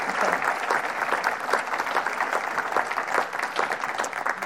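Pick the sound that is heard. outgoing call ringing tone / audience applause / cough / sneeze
audience applause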